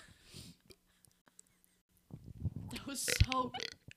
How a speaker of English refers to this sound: And the real authentic burps. The real authentic burps.